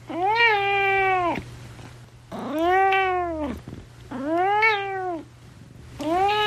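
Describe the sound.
A cat meows in long, drawn-out, rising-and-falling cries: three full meows with short pauses between, and a fourth starting at the end. A low steady hum sits underneath.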